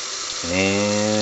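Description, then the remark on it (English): Cold water pours steadily over whole coffee beans in a pitcher, 8 cups of water to 2 cups of beans; a broad splashing hiss is joined partway through by a sustained hollow ringing tone as the pitcher fills. “And we're just pouring cold water right over the beans is all we need to do.”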